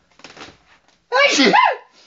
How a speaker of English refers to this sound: Do you want to hear my girlfriend sneeze? Are you going to do your usual sneeze? You're just going to sneeze once, now you've been recorded.